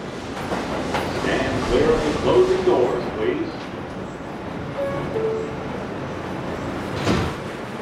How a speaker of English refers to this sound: So I head into the subway and set off to see Galit.